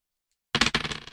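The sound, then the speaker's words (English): Two six-sided dice, rolled in a tabletop role-playing game, clatter onto a hard tabletop after a moment of silence, a quick burst of sharp clicks settling into a short, fading rattle, fairly loud with no voices. They total 10. “2d6 plus charisma for a parlay.”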